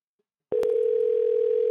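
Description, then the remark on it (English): A steady electronic telephone ringback tone on an outgoing phone call begins abruptly after a moment of silence and holds at an even, moderate loudness until the end, with no voices present. “Ringing this time.”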